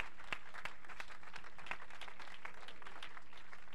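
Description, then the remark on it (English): An audience claps steadily in sustained applause as a hand clap of praise to the Lord for a visiting preacher, many hands making a dense, crackling wash with occasional sharper individual claps standing out, continuing without pause and with no voices over it. “And I want you to put your hands together and give the Lord a hand clap of praise”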